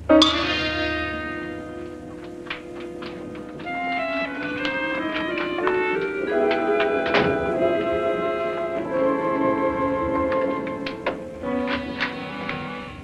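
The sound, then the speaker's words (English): A series of heavy door thuds, several in a row at uneven intervals, landing over sustained orchestral music that plays throughout. “How many doors is that?”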